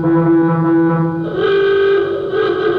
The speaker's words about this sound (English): Siren.